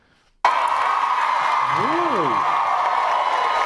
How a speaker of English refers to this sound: And then applause break.